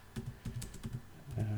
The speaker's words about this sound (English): I went to university, so I type really fast. As you can tell, like typing out one key at a time here.